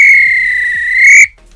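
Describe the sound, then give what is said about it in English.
A referee's whistle, blown to end a match after extra time, sounds one long, loud, steady blast for just over a second, then cuts off abruptly, leaving faint background noise. No one speaks. “This is when the referee blew the whistle because it's finished.”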